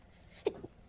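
A single quick, stifled sneeze bursts out sharply, followed by a softer breathy trailing sound, with quiet background and no talking around it.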